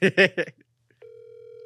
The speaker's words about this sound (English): That's how it's supposed to ring. I don't know what's going on my speaker. It's okay.